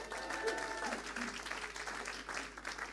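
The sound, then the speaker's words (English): A church audience claps for the speaker's wife in a dense, steady burst of applause lasting the whole clip, with a few faint tonal notes early on and no one speaking over it. “So can you give her a big clap, hey?”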